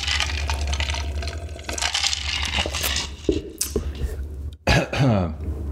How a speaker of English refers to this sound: Take a sip of my beverage.